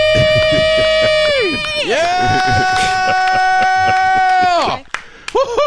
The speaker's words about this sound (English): From Las Vegas, Nevada. Count it down. Let's hear a debt-free scream. Three, two, one. We are debt-free!